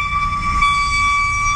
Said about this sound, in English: We're told the whistle lasts anywhere from a few seconds to a couple of minutes. There could be just somebody out here just hitting a horn. At first, Chester Epperson thought it was a foghorn from a boat.